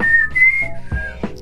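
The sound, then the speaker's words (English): A person whistles a brief melodic phrase of a few clear, sliding notes, a tune hinting at The Hunger Games, fairly loud, with no talking over it. “If you didn't get that from the whistle, I don't know how you didn't get it.”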